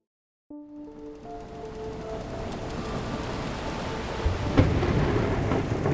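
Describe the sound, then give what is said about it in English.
A thunderstorm with lightning above North Carolina's coast at night rumbles loudly and continuously, with deep rolling thunder, steady rain and gusting wind over the water, building after a brief silence and swelling with a sharp crack near the end. “Lightning tore a hole in the sky above North Carolina's coast. Wind ripped over the Pacific, battering any vessel unlucky enough to be on the water the night of January 2nd, 1813”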